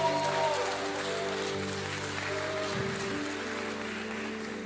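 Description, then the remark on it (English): A church audience applauds steadily for several seconds during a service, a dense crackling wash of clapping, while sustained keyboard or organ chords hum softly underneath. “Come on, can we give him a big round of applause?”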